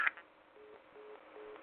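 A phone call from a man in prison, who is allowed 15 minutes, cuts off with a short click, followed by a steady series of three evenly spaced, low electronic beeps over faint line hiss, no voices.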